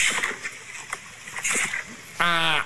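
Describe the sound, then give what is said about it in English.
Water splashes and sloshes in irregular bursts, like someone swimming, followed near the end by a brief, louder high-pitched tonal cry. “Listen. It sounds like swimming.”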